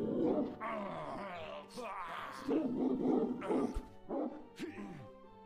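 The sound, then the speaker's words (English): A dog in a video game growls and snarls in low, rough bursts with a harsh roaring edge, fairly loud, trailing into a few shorter growls toward the end. “Did I intimidate the doggy?”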